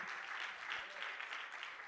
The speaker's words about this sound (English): Somebody, can you clap your hands and give God some praise today?